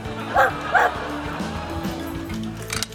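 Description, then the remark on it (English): A small dog gives two quick, high-pitched yips about half a second apart, then falls quiet over a low background hum. “Oh, what a cute dog.”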